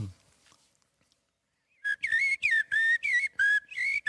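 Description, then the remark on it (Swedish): Common blackbird song: a run of loud, fluty whistled phrases with rising and falling pitch, repeated in quick bursts after a near-silent opening, with no talking. “Det är koltröst.”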